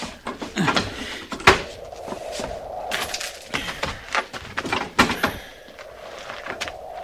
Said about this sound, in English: Yes, sir. Get the door.